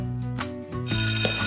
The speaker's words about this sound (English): The bell rang for recess and everyone ran outside to play.